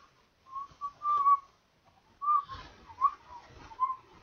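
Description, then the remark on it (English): A person whistles a short melody from a silent surrealist film in two phrases, steady pitched notes separated by a brief pause, with no talking. “I was trying to whistle some music from the movie.”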